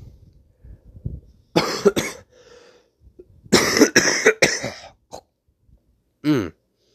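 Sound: harsh repeated coughing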